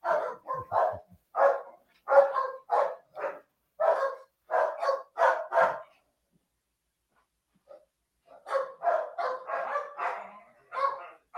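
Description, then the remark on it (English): A dog barks loudly and rapidly in two bursts as a DoorDash delivery arrives, a quick run of sharp barks for about six seconds, a short pause, then another volley of excited barking, with no talking. “Dogs will always let you know.”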